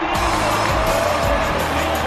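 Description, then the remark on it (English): A rugby league stadium crowd roars and cheers after Mitchell Moses of the Parramatta Eels kicks from 20 metres off the left-hand upright with the score 22 all, a dense, steady wall of voices that stays loud and unbroken for the whole couple of seconds. “Oh, it's beautiful. Hear the crowd.”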